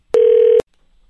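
telephone dialing and ringing

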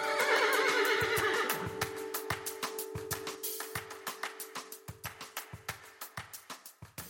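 horse neighing

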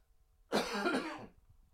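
cough

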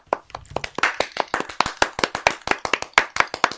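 round of applause

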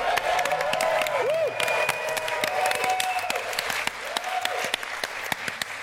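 audience applause and cheering

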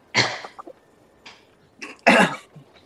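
awkward cough

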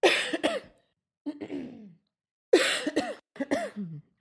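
deliberate coughing

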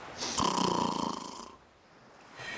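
snoring

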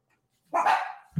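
dogs barking

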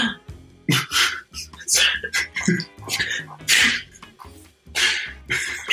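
gasp

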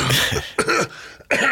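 dry cough

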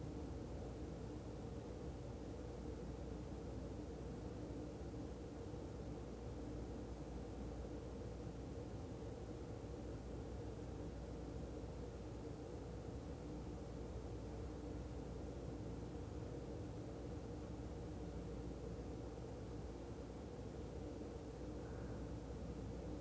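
ocean waves

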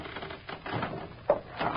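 old wooden rafters creaking

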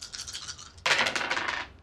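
dice being rolled

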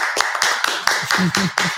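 people clapping

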